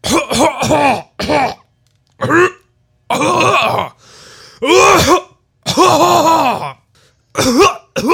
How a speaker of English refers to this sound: And this is when he began coughing.